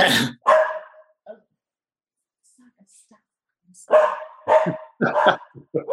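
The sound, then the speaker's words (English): A dog barks loudly at someone at the door during a Zoom call: a couple of sharp barks, a pause of a few seconds, then a rapid, excited run of barks. “And I have to apologize right now for my dog.”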